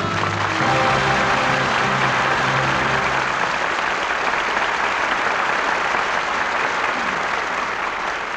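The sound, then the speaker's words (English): Sustained audience applause saluting three performances, as Charles Boyer, Paulette Goddard and Susan Hayward return for a curtain call: a dense wash of clapping from a large crowd that holds steady and loud, with faint musical tones under it during the first few seconds. “Your applause gives a proper salute to three fine performances.”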